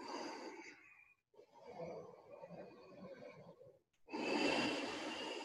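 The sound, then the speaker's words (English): Slow, audible breaths drawn through the throat with the lips sealed and the head dropped towards the ground, a soft hissing rush on each inhale and exhale, steady, with a short pause between breaths. “Generate sound breathing. Make the sound come from your throat. Seal your lips.”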